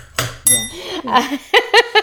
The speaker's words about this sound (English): Playing with my bell. I'm getting used to it. Trying to get to know my new bell.